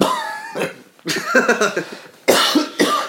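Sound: man coughing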